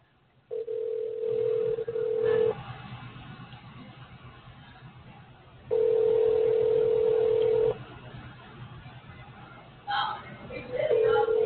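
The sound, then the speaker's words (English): A phone ringback tone repeats on an outgoing call, with steady two-second rings separated by pauses, clear over a faint background hum. “People don't answer the damn phone. Answer your phone when people call y'all, for real.”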